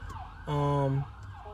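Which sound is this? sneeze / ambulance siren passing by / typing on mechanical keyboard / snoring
ambulance siren passing by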